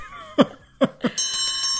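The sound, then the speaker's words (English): Three short, sharp thuds lead into a loud, bright electric bell that rings steadily with a rapid pulsing clang, like a trading-floor opening bell, with no voices present. “There's the opening bell.”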